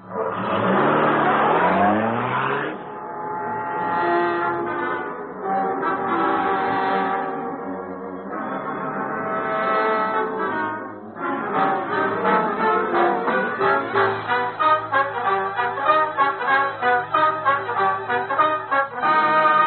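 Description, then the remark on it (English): A car engine roars and revs repeatedly, pitch climbing and dropping through several gear shifts as the vehicle accelerates away to trail a taxi, loud throughout with no talking. “He's getting in a taxi. Trail him, Cato. Don't lose sight of him. Let's go.”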